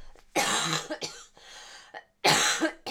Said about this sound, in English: I have a cough back, just bear with.